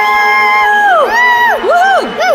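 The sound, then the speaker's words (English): Loud celebratory whooping and cheering from a mother and her daughter, with rising and falling "woo" cries overlapping in quick succession for a couple of seconds, celebrating South Africa's Banyana Banyana becoming champions. “I think … and I only have one thing left to say. What is that? Woohoo!”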